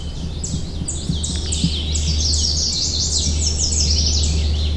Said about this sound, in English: We're greeted with a cacophony of bird calls. Take a listen and see how many birds you can identify.